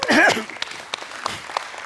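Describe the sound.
Scattered audience applause: a brief burst mixed with a voice or cheer at the start, then thinning into sparse, irregular individual claps at moderate volume.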